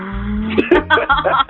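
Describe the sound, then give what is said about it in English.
A voice imitates a car speeding off, a low droning engine hum with a few revving bursts, fairly loud, lasting under two seconds. “And then in the background, you see my ass in the car like...”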